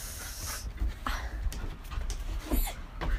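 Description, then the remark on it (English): A dog named Kona pants in quick, rhythmic breaths, with a few faint whimpery squeaks mixed in and low rumbling background noise throughout. “Here's Kona breathing.”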